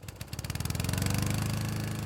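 A brand new Victor petrol lawn mower with a Predictor automatic accelerator sputters to life in an Australian backyard, its chugging beats quickly speeding up into a loud, steady buzzing drone with no one speaking.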